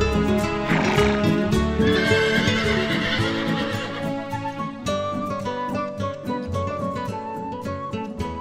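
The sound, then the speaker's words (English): A horse neighs loudly, its whinnies ringing out repeatedly over about eight seconds, with faint hoof clip-clops underneath and no one speaking. “I just can't get enough of those horse sound effects.”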